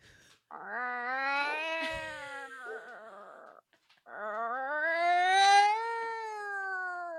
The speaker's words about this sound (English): A cat in heat. Oh, I haven't heard that for so long.